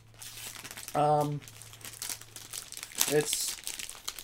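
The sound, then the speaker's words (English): Continuous crinkling of a plastic bag being handled and pulled open as someone struggles to get its contents out, with irregular crackles throughout and a couple of brief voiced grunts or hums over it. “It's in a plastic bag, and I can't get it out because I'm dumb.”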